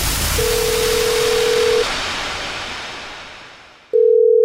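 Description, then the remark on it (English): A steady telephone line tone, heard before a prank call on The Jubal Show radio programme, hums over a loud, rushing noise wash, cuts off, then returns alone near the end as the noise fades away. No one speaks. “It's another Jubal phone prank.”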